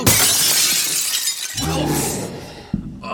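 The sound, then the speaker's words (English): A loud crash of shattering glass bursts out as a person is thrown into a glass display case, a bright spray of breaking shards lasting over a second, followed by a strained human voice groaning and another short vocal burst. “He grabbed me with his right arm and tossed me into a nearby display case.”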